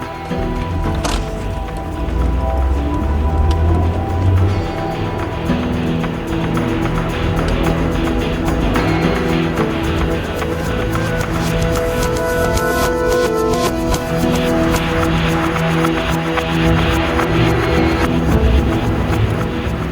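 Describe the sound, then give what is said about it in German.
A van carrying several passengers drives along with a steady, loud low rumble, overlaid by continuous clattering and knocking rattles. No one speaks. “Wenn ihr alle eng zusammenrückt, dann könnt ihr gerne mitfahren. Das ist ja wunderbar. Da steht mein Van.”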